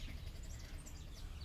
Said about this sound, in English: And their songs and the chirping, and even I just realized the other day that I can tell when the birds are fighting. I'm so used to them to an extent that I know how they sound like when they fight.